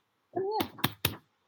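A dog gives a brief, high-pitched whimpering cry that bends upward and then falls, followed by three sharp tapping thumps in quick succession, with no talking.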